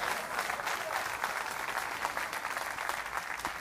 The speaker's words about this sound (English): Somebody ought to give him a clap offering.